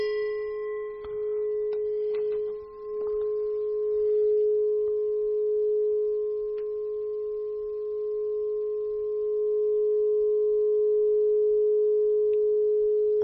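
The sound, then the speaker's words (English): A Tibetan prayer bell, a simple piece of flat metal, in a temple is given a very light tap once and keeps ringing with a steady, pure mid-pitched hum. Its brighter overtones fade within a few seconds, while the main tone stays strong throughout. “This is a Tibetan prayer bell, and it looks just like a very simple piece of flat metal, but if your listeners can listen in, they'll be able to hear the amazing tone and also the resonance.”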